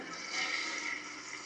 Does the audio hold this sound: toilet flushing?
yes